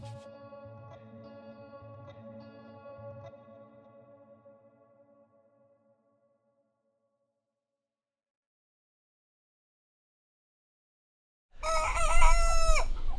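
A rooster crows loudly once near the end at Chavat HaChofesh, the Freedom Farm in Moshav Olesh, between Netanya and Tul Karem; a harsh, wavering call rich in overtones, coming after a long silence that follows a steady, fading tonal hum.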